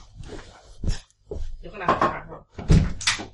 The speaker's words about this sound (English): is just answering the door to the pizza guy.